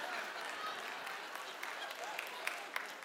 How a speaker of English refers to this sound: Why are you clapping?